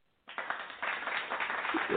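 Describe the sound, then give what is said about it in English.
Steady applause played on a radio call-in show to welcome a caller begins after a brief silence, a dense, even patter of many hands clapping that holds for nearly two seconds, sounding slightly muffled and thin. “Let's go ahead and throw some claps on.”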